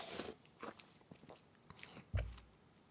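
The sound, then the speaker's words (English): A brief slurping sip from a can of Coke Zero, followed by a few small wet mouth sounds and a soft clunk as the can is set down. No one speaks. “let me take a sip of my Coke Zero.”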